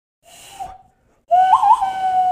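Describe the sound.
A person whistles a Wild West–style tune by mouth: a short, quieter note, a brief pause, then a louder sustained whistle that warbles up and settles. No one talks.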